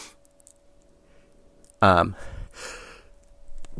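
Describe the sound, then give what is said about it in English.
One abrupt, loud sneeze: a sharp voiced burst followed by a breathy, hissing exhale, standing out against an otherwise quiet background with faint hum. A speaker sneezes while talking about coronavirus. “As I'm talking about coronavirus, I sneeze.”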